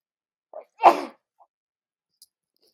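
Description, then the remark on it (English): A single sharp sneeze bursts out after a brief intake of breath, followed by quiet with a couple of faint small noises. “Miss Sneeze, I'm so sorry.”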